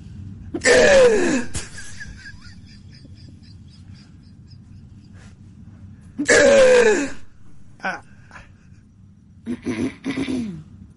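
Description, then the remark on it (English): A woman's odd, squeaky hiccups: two loud, sharp squealing bursts several seconds apart, followed by a few shorter squeaky catches, over a low background hum. “No, that's the weirdest form of hiccups.”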